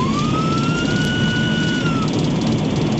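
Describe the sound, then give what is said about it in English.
A police car's engine races at about 140 miles an hour as it chases down a car, passing people on the shoulder: a loud, steady roar of road and engine noise with a high whine that climbs, holds, then drops away near the end. “and drove 140 miles an hour to catch up, even passing people on the shoulder.”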